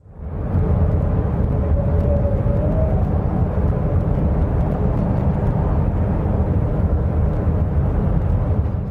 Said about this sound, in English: And people who live around this area, specifically on the Canadian side, for like a decade now, have reported hearing this loud, mysterious hum coming from this island. And I have a little clip of it so you can kind of hear how annoying the sound is.